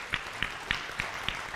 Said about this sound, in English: Amen. Thank you so much, praise and worship. Can we get another big clap offering for Jesus?